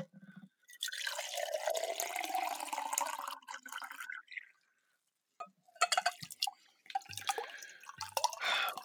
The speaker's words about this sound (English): just sipping my glass of room temperature water. Look, I'm pouring another one.